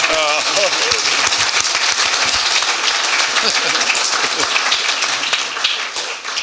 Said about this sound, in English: I think that deserves a round of applause.